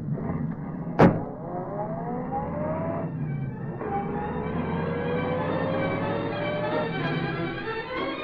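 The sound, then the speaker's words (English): A police squad car's door slams, then its engine roars and revs up, rising in pitch through gear shifts as it speeds off in pursuit of the Green Hornet's car, with a faint siren-like wail mixed into the steady, loud motor noise. “Get in that squad car, Cassidy. Turn around and get after him.”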